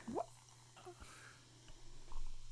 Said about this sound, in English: I'm going to pour myself some more. Diet mug root beer.